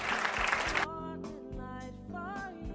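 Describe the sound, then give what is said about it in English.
An audience claps hands for Jesus at the preacher's call, in a dense, steady burst for just under a second, then the applause cuts off and soft sustained instrumental music takes over. “Can you say amen and clap your hands for Jesus?”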